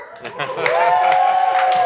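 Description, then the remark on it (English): A man claps for himself, a few scattered hand claps popping out sharply over an ongoing murmur of voices and a sustained vocal tone, the claps irregular and moderately loud. “Claps for himself.”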